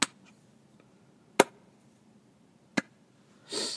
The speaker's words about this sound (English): Are you slow clap? Are you gonna build up or anything? Like, no. This is as much as I enjoyed it. As slow as I'm gonna clap for you.